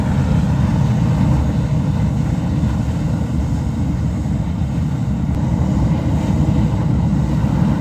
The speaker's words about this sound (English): The Ledge Geyser suddenly got much louder just now.